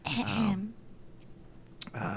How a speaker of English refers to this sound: That's a great cough.